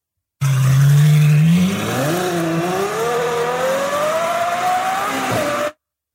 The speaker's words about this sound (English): I can tell you what engine it is. Okay, let's go start with that. It's a Ferrari V12. It is.